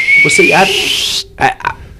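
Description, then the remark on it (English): A voice imitates a diesel truck's turbo whistle: a thin, steadily rising whine over breathy hiss for about a second, cut off abruptly and followed by two short vocal bursts. “But yeah, they sound like airplanes taking off. I love it though. Mm-hmm. That little whistle.”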